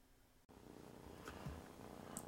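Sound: cat purring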